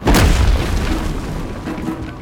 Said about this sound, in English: He smashed his fist into the wall, sending down a cascade of rock.